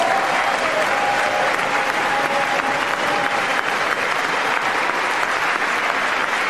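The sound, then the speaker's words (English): Sustained applause from a large audience in a legislative chamber as Paul Pelosi is asked to stand, steady and dense for several seconds, with a faint whistle-like tone drifting through the middle of the clapping. “Yeah, the crowd goes mild.”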